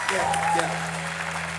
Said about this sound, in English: Yeah, come on. Huge round of applause.